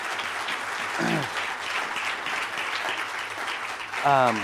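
An audience applauds with steady, dense clapping for several seconds, and a couple of brief rising whoops or cheers break through near the start and again near the end.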